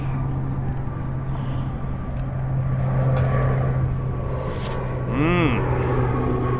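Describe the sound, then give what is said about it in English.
A Coast Guard plane passes overhead at McClellan Air Force Base, its engine a loud, steady drone throughout, with a brief rising-and-falling whine near the end. “Well, it's one of those Coast Guard planes, so that's cool.”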